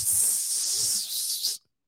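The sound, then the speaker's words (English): A steady, hissing blast from an aerosol bug spray can, sprayed outdoors to drive away bugs and gnats, bright and loud, lasting about a second and a half before cutting off abruptly into silence. “I got to spray them away.”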